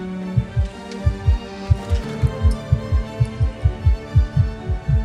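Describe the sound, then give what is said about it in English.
A rapid heartbeat thumps steadily, muffled lub-dub pairs, about two beats per second, over a low constant hum with no voices. “Why is your heart beating so fast?”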